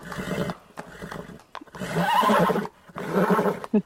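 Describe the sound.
A person imitates a pony's whinny with several shaky, rising bursts of voice over a few seconds, fairly loud, with short breaks between them.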